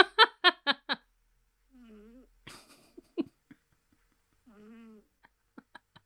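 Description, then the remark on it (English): A kitten snoring: two soft, whistling, wheezy breaths a few seconds apart, each with a faint nasal squeak. A quick run of four loud taps comes first, and small clicks follow. “Is that kitchen snoring?”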